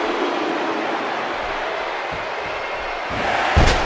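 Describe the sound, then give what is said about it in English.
A steady roar of crowd noise, then near the end a single loud, sharp slam of a wrestler's body hitting the ring mat in a back suplex cuts through as the crowd swells. “Oh, what a huge snap. Back suplex.”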